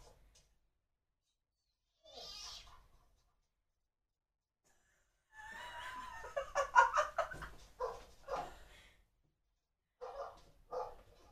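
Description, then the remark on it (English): A dog barks and yelps in a few short bursts, with a longer run of excited, high-pitched barking in the middle, moderately loud, with no talking. “They're gonna be mean to the dog.”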